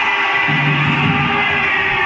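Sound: basketball crowd cheering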